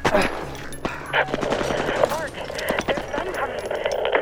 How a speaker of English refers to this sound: We heard gunshots and shouts.